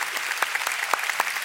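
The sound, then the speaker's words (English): An audience clapping together to give the Lord a big clap, a dense wash of many hands with sharper individual claps poking through at irregular moments, steady and fairly loud with no voices over it. “Oh, you want to clap? Let's give the Lord a big clap.”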